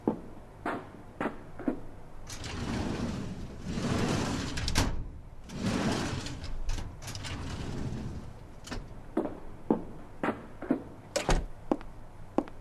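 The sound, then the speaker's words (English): Metal drawers of two red filing cabinets in a hallway slide open and shut several times in a row, with sharp clacks and longer rumbling rolls, without any talking. “Open a random drawer in each one of them, then come back in here.”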